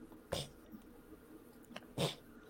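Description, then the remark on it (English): Two short, sharp sneezes about a second and a half apart, the second a little stronger, heard faintly against a quiet background with no one talking. “I know, bless you.”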